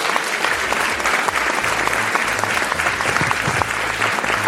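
An audience applauds steadily, a dense wash of many hands clapping at an even, fairly loud level throughout, with no voices breaking through.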